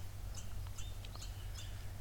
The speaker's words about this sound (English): The chipmunks are awake. Yeah. I don't know if you can hear them.